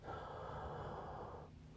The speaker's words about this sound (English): Is there any doctors out there? Do you guys hear that wheezing in my... Hold on, let me do it again.